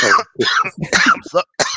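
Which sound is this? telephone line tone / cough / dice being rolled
cough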